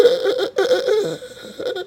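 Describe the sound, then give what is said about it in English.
A voice imitates heavy, labored breathing, a few raspy, strained gasps in quick succession, fairly loud, like someone struggling for air, mimicking a video game character dying in a cutscene. “And you just sit there, like, breathing all deep, like...”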